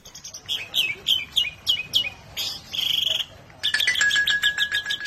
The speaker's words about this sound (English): This starling's song is so prized by collectors that it's been trapped nearly out of existence. And in captivity, the lonely birds have begun to lose their notes.